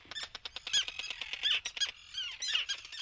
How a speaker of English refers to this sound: Mark Seth Lender recorded these terns at Faulkner Island